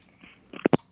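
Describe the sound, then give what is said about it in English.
A phone call hang-up tone: a quick pair of short electronic blips, fairly loud, preceded by a faint brief chirp, with no one talking. “we're going to hang up on you because I'm calling you on my phone, okay?”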